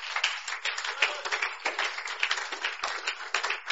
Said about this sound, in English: Clap for the Lord Jesus.